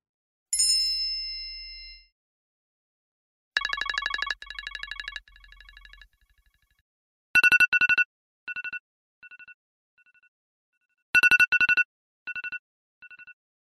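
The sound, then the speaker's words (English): Three iPhone alarm tones, chimes, beacon and radar, play in turn with no talking: a bright chime that rings and fades, a fast buzzy pulsing tone, then sharp high beeps repeating in a quick pattern. “Now, the bottom three are chimes, beacon, and radar. These are awful.”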